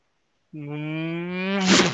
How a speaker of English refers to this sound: And I literally gun it because I can hear the alien screaming on the ship.